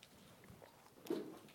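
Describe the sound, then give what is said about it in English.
A faint, brief plastic crackle as a water bottle cap is twisted open, with no talking. “Go ahead and take a sip. Crack it open now so it won't crack later.”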